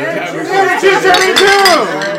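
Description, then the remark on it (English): Glasses clink together in a toast to the film The Silence of the Lambs, a few bright, quick taps layered over overlapping voices chattering. “I mean, Terminator 2, it's going on, but let's cheers to the Silence of the Lambs.”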